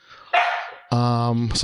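A dog barks loudly: a short, rough bark followed by a longer, drawn-out bark with a strong tonal, almost howling quality.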